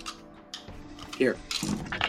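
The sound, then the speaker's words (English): Dice rattle and tumble in a quick burst of irregular, bright clicks and knocks, fairly loud, with a short pause before a final scattered clatter; the roll comes up 19. “Here are your dice. I mean, that worked. Rolled a 19.”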